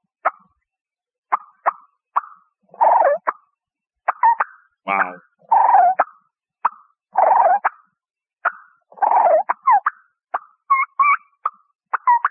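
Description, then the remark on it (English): Imitated wild turkey cluck and purr: sharp single clucks spaced irregularly, alternating with short rolling, fluttering purrs, loud with silence between calls. “So, okay. Here comes the cluck and purr.”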